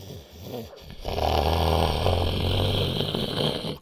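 The deep, dull roar of a spaceship's rockets at launch surges in after about a second and holds steady, a loud, continuous low rumble with a rough, grinding texture and no voices.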